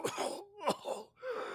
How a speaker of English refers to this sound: At that moment, then the kobold, who once again has a just dying, laying on the beach, kind of wakes back up, coughs a little bit.